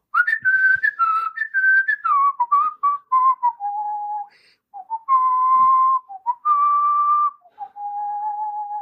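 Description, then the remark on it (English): A person whistles a melody they recorded on their album, clear and strong, moving through stepped notes with a few short pauses before settling into longer held tones. No one speaks. “That's a good whistle, man.”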